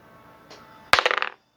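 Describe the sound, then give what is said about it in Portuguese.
Dice rolled for a dexterity check clatter onto a hard surface with a sharp initial hit followed by a quick run of bright, rattling bounces that fade out after about half a second, preceded by a faint soft shuffle. “Tua sorte que os dados ajudam.”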